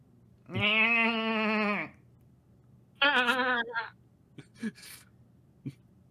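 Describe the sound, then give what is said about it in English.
A person imitates a screaming goat with two loud, quavering bleats, a long one followed by a shorter one, then a few faint breathy sounds. “Disclaimer, I don't know what goats sound like. It's something-ish. They can really scream.”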